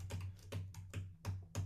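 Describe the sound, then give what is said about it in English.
Rapid computer keyboard typing: a quick run of sharp clicking keystrokes in uneven bursts, fairly quiet, with a steady low hum underneath and no talking. “she just types really fast.”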